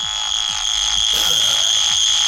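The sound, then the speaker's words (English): A piercing, high-pitched electronic tone from the monotronometer, giving its mark for a review, drones steadily and loudly for the whole clip, with a second shrill band above it and faint rhythmic low pulses underneath, like a drill whine. “A kind of drilling into your brain, I think you'll find that one, Mark.”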